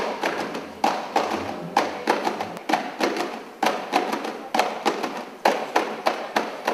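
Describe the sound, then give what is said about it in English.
Rhythmic percussive slapping of a gumboot dance performed by five male dancers in boots, sharp thuds and smacks falling in quick clusters about once a second, loud and steady over several seconds with no voices. “The percussive slapping of the gumboot dance that breaks out bears all sonic resemblance to the traditional form, but none of the visual markers beyond the boots themselves.”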